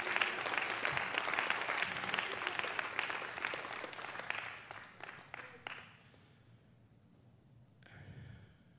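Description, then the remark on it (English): A church audience claps their hands in praise in a dense, steady burst of applause that gradually thins out and fades, leaving a few scattered claps and quiet murmuring near the end. “Come on, clap your hands and praise him right now.”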